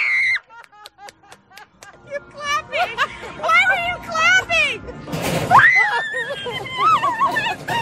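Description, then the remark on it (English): Panicked, high-pitched screaming and squealing rises and falls in a rapid, wavering series of shrieks, with excited voices and breathy yelps tangled around it, building to a loud sweeping cry. “It's like, Can you explain to us why you were screaming?”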